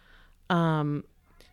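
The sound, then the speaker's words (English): A cat named Hercules, crying as if he hasn't been fed, lets out one loud, drawn-out meow lasting about half a second, with quiet background sound and a faint short noise afterward. “oh my God, Hercules is crying like he hasn't been fed.”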